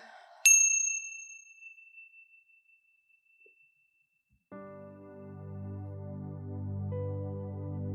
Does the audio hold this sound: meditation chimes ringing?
yes